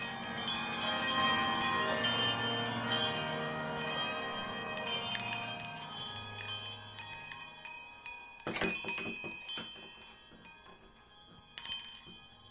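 A string of small tinkling alarm bells strung up around a pumpkin patch rings continuously, bright and jangling, with a couple of sharper, louder bursts of jingling toward the end. No voices.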